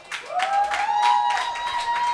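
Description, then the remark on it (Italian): An audience applauds at a live venue, a steady wash of clapping with a sustained, slightly rising whistle-like tone ringing over it throughout. “e questo è l'applauso del volume grazie.”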